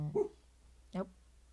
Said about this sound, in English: The bean is barking. The bean has woofed. I think someone's outside.